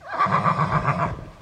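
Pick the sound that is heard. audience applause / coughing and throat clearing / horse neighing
horse neighing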